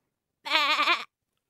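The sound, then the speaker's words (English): A single wavering, goat-like bleat voiced by a person, lasting about half a second, loud, with a quivering vibrato through its harmonics, then silence. “Digital …, give us your goat noise in 3, 2, 1.”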